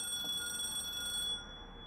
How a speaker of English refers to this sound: And then the telephone started ringing.